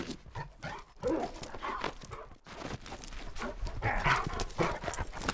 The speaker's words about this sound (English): Then, a large dog scrabbling claws and throaty huffing presaged his reckless charge down the stairs directly to